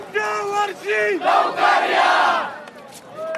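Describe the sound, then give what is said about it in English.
A large festival crowd of devotees, easily over a few thousand, bidding farewell to Lord Ganesh chants two loud, drawn-out calls in unison, then erupts into a roaring cheer that slowly subsides before another chanted call begins. “With this chant, devotees say goodbye to Lord Ganesh with the hope that he visits them again next year.”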